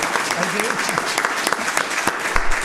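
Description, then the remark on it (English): Steady audience applause for a local historian and retired teacher on stage at an evening event, a dense patter of many hands clapping at an even, lively intensity with faint voices murmuring underneath. “We can give him a round of applause for that.”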